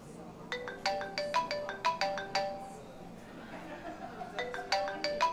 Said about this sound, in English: Oh, my phone.